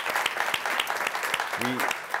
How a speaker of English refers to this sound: I'm giving them a round of applause.